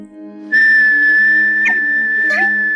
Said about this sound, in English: Whistle. What? Whistle. Go on.